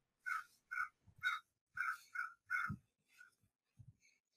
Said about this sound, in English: Hey, bird. What's that bird doing? It's like a really horny bird outside my window. There's a really horny bird.